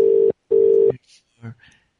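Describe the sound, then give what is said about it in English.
A phone line rings through the earpiece in a quick double burst of steady tone, followed by a brief murmur of a voice. The outgoing call goes unanswered. “Seriously, you would think somebody would answer that shit.”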